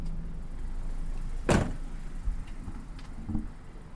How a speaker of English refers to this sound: The driver grips the keys. Turns the truck off. Opens the cab and steps outside.